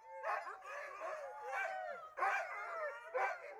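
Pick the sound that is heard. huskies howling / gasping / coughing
huskies howling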